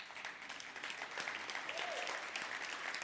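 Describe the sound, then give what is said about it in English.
An audience claps steadily for about three seconds, a dense, even patter of many hands at moderate loudness, with a faint murmur of voices underneath. “You could clap, women.”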